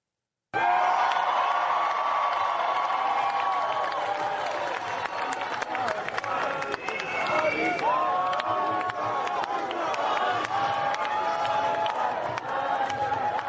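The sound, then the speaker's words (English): A large crowd at a rally for Israel cheers and applauds steadily, with a dense wash of clapping, rising whoops and shouts carrying over the constant loud roar throughout. “What an extraordinary crowd.”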